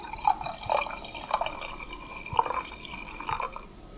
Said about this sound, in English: I'm going to pour a little bit more of this. Let's see if we can get some ASMR in here.